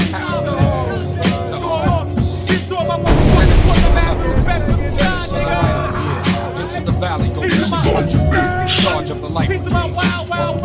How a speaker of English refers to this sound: All I hear is gunshots.